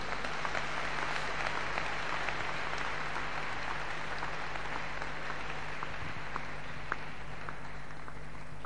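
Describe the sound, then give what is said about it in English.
A crowd of people claps continuously when a preacher calls on them to clap their hands for Jesus, a dense, steady wash of many hands with scattered sharper claps standing out, sustained for several seconds with a low hum underneath. “Clap your hands for Jesus, somebody.”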